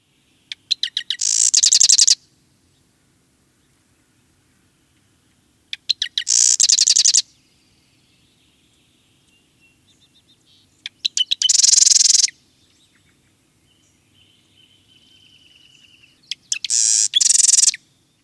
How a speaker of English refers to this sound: So here are a few more examples of the marsh wren.